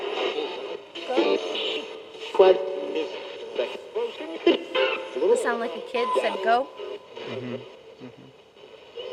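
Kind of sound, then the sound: machine, radio static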